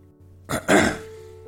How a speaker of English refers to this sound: I pause, drinking some water, clearing my throat.